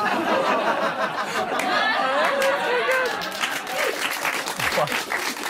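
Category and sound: crowd, audience clapping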